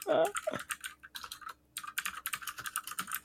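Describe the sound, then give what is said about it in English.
Dense, rapid clatter of keys on mechanical keyboards, many keystrokes overlapping in a busy, uneven rhythm. A brief voice sounds at the very start, and the clicking runs on steadily. “Listen to all your mechanical keyboards.”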